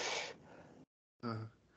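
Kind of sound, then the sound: human body sound, person yawning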